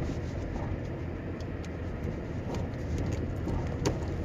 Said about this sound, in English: I'm in the car and I'm going to work.